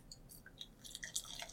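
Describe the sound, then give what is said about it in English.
Deep copper-colored German-style lager pours from a dark bottle into a glass, a quiet stream with small glugs and fizzy splashing that grows busier toward the end, with no talking. “And the pour.”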